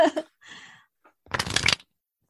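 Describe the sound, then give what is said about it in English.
Playing cards being shuffled: a few quick papery flicks, then a louder, fuller riffle lasting about half a second before it stops. No voices. “Pick a number between 1 and 10, and then that's the number I will stop shuffling on.”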